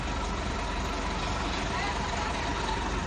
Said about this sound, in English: Oh, yeah, that bus comes round now, I think.